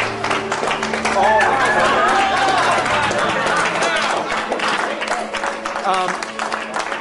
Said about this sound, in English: There must be no more clapping. They're done. Never stop clapping.